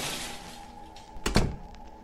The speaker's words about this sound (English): Jamie closes the gate and then the closet door.